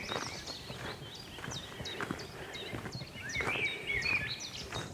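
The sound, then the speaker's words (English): A chiffchaff sings a steady string of sharp, repeated chirping notes in woodland, while footsteps crunch along underneath throughout on a woodland walk. “Chiff chaff.”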